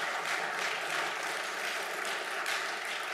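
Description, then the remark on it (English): A crowd claps steadily and densely for a few seconds, a sustained wash of many hands with no clear individual beats and no voices rising above it. “Amen's a good place to clap.”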